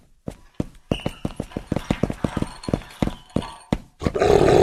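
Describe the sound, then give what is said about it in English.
Dogs snarling and growling on the attack, a rapid string of harsh, throaty bursts that builds to a louder, ragged roar at the end. No one speaks. “I've only got a few rounds left, and I'm not at all convinced that these tranq rifles will do more than make the dogs mad.”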